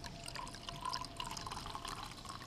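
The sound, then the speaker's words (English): A quiet, steady pour of sparkling wine into a cocktail of green absinthe, black cassis and red Campari in a glass, with soft splashing and faint crackling bubbles throughout, without any talking. “We're just going to pour in a little bit of sparkling wine.”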